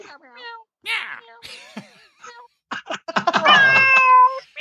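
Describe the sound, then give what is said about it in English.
Human voices imitate cat meows for a bit called Cat's Cradle, a string of short, rising-and-falling mewing calls followed by a louder, drawn-out meow near the end, fairly loud. “Meow! Meow! Meow!”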